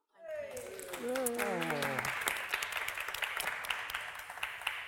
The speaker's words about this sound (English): I got a cheer. That's nice.